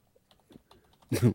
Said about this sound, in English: And you can hear the typing.